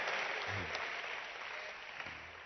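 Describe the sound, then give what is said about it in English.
A church crowd claps hands steadily for the pastor and bishop of the church and his wife, a dense wash of overlapping claps filling the whole clip at an even, moderate loudness, with a faint voice briefly surfacing underneath. “Clap your hands for...”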